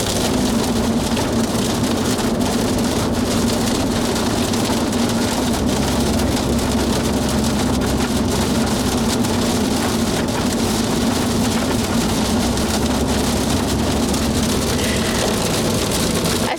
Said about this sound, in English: The rain kind of stopped a little bit because I'm hoping this is getting all picked up on our little microphone.